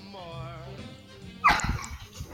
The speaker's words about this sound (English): Hey, calm down, doggy. Calm down, dog.